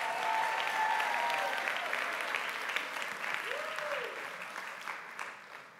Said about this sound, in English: Great job, media team, all week. Great job with the live stream. You know, live stream never cut out one time in 11 services. Great job. Give the media team a big hand clap.